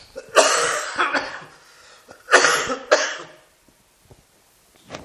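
Heavy, harsh coughing: two clusters of loud, chesty coughs a couple of seconds apart, followed by quiet breathing and small throat sounds.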